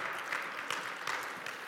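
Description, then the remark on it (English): An audience claps steadily, a dense patter of many hands at a fairly even level with no voices over it, lasting under two seconds. “Don't clap for him. He'll keep talking.”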